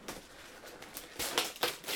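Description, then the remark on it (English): Wrapping paper is ripped open from a gift, crinkling, starting with soft rustling and then louder tearing bursts near the end. No one speaks. “Yes, get the, don't worry about ripping the paper. Let everyone hear what you're doing.”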